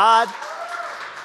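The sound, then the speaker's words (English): A brief sung or spoken tone cuts off, giving way to steady audience applause given to the Lord at a religious service, a dense, even wash of many hands clapping that holds at moderate loudness to the end. “Come on, let's give the Lord a round of applause.”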